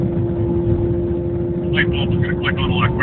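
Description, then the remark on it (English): A motorcycle roars past at very high speed in traffic, weaving in and out of cars, its loud engine drone steady throughout, with a rising, wavering whine toward the end amid a rumble of road noise. “I don't know if you could hear that, but a motorcycle going a billion miles an hour and weaving in and out of cars has zoomed past me.”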